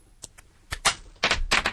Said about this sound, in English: So heads she comes in, tails she doesn't, okay? We're tossing two coins, go.